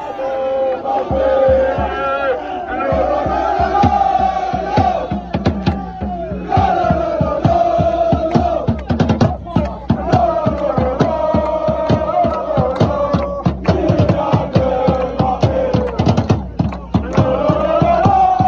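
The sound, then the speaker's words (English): A large crowd of PSG Ultras cheers and chants loudly in unison, a dense, continuous roar of many voices with rhythmic shouts and sharp bangs scattered throughout, welcoming the PSG squad back in Paris at night, lit only by flares. “A certain someone now equal with Edinson Cavani in all-time PSG goals got some extra attention and love from the crowd, lit only by flares in the Parisian night.”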